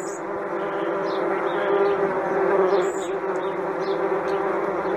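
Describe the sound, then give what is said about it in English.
A dense swarm of angry hornets drones continuously in a room after their container was knocked over, a thick, mid-pitched buzz of many wings layered together, loud and steady with slight swells and no voices. “There's bees, big old hornets in my room.”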